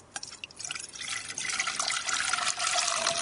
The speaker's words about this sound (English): Okay, so we'll pour that into the saucepan now.